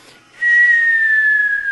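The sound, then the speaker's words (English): A single long, clear whistle begins abruptly and glides slowly downward in pitch, imitating a falling bomb. It stays steady and fairly loud throughout, with no talking. “We start walking down the river walk, and all of a sudden, we're talking about how great the day is, and all of a sudden, you could almost hear the sound of a bomb dropping.”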